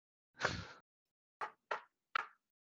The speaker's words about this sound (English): I'm gonna knock, and then I just knock twice.